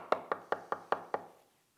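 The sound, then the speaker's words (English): Six sharp knocks on a wooden door in a steady, even rhythm, fairly loud, each with a short hollow ring before silence follows. “I walked down to the place where Dr. Peacock was staying, and I knocked on his door.”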